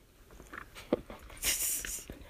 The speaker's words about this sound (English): Alright, I think sufficient paper has been removed from the dog's mouth.